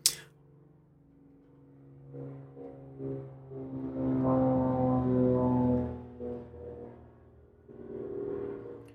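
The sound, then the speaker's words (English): A propeller airplane drones overhead, heard from a dining room used as a studio in the vicinity of the EAA Air Museum in Oshkosh: its low, humming engine tone builds steadily, peaks loudly midway, then fades and swells again slightly as it passes. No one speaks. “All right, it is just a really noisy day here in the studio, aka dining room. Plane just drove by, so I live sort of near, not really near.”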